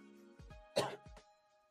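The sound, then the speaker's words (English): A short, harsh cough bursts out once during a live show, framed by a few low throaty grunts just before and after, over a faint steady tonal hum in the background. “Had to cough a little bit, guys.”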